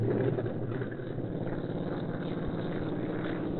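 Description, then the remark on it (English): A steady, heavy roar of aircraft engines running up as the aircraft gets ready to take off, a dense low rumble that holds at an even, fairly loud level throughout with no voices. “Looks like they're getting ready to take off.”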